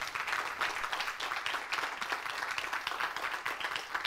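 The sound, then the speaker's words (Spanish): A church audience applauds the Lord after a prayer, steadily for several seconds, a dense, even wash of many hands clapping with no break and no voices standing out. “Da un aplauso al Señor.”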